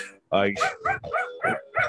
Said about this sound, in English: Why is there a dog? Because I'm doing this in Army Chris's backyard, and Athena thought I was being aggressive.